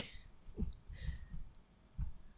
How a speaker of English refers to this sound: As you're clicking away.